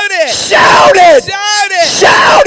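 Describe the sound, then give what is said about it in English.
A battle shout as a host goes forth to the fight: loud, raw yelling from several voices that swells and breaks in about three bursts, forceful, with no clear words. “And he came down to the trench as the host was going forth to the fight and shouted.”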